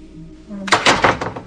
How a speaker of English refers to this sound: It makes that hollow core door sound.